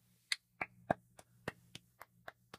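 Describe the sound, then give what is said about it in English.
One person's hands clap nine times in a steady, fairly quick rhythm, each clap a sharp, bright smack. The claps are somewhat quiet, with a low steady hum underneath and no talking. “I don't know if it like muffled it, but I'm clapping if you can't hear.”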